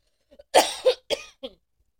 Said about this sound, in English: Except for my rant, I just went on and yelled in the fucking microphone because I was so fucking pissed. To the point now I'm in a coughing spell.